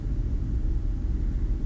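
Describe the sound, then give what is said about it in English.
A spacecraft's life support system, with Jupiter in view from the viewfinder, hums, a steady, deep rumble that stays level and unbroken throughout, with no voices. “I hear the hum of the light support.”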